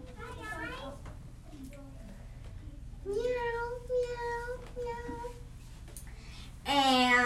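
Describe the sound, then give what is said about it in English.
A child's voice imitates a cat, making a few drawn-out, wavering meows, with a short quiet gap between them and the final meow coming out loudest and highest. “And they had a cat that went.”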